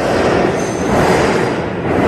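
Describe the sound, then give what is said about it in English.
A subway train rumbles loudly and steadily, its dense, gritty roar filling the full two seconds with a harsh rhythmic thumping from a flat wheel, with no voices. “That is the rather unpleasant sound of a flat wheel on a subway train.”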